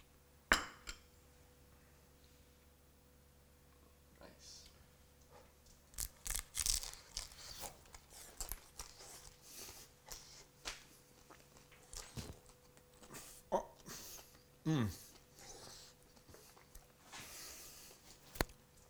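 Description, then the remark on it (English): Crisp, crackly crunching from biting into a hot fried egg roll with cheese, dipped in a sauce with horseradish, a series of sharp irregular bursts, some quite loud, between quieter pauses of chewing, with no talking. “But did you hear the crunching?”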